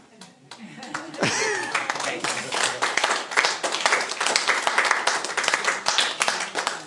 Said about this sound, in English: A fair smattering of applause.